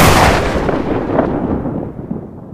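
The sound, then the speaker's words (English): A loud clap of thunder bursts out sharply, then rolls on as a deep, rumbling tail that slowly fades, its crackling high edge dying away first. “A clap of thunder roared overhead, so loud the room seemed to shake.”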